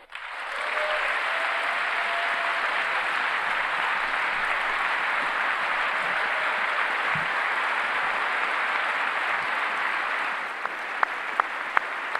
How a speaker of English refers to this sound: Clap, clap, clap, clap, clap, clap, clap, clap, clap, clap, clap. I did good.